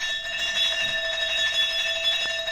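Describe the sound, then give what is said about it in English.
A doorbell rings continuously, a steady, bright electric buzzing ring that holds unbroken for a few seconds at a fairly loud level with no voices. It is rung at a closed factory's door to call the night watchman and ask for Mr. Edmund Purbright's flat. “Just bob out of sight when I ring this bell and wait for instructions, right?”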